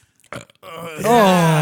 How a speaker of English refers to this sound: You needed the burp? Yeah, you needed the burp. The burp was definitely important right there. I want to push the burp.